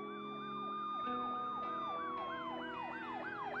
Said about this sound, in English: I could hear the sirens coming in the distance.